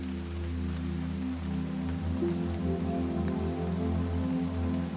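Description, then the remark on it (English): Steady rain patters on a surface in a continuous hiss, blended with low, sustained musical tones humming underneath at an even volume throughout. “See the colors, hear the rain, the music, and feel the sensations of being there.”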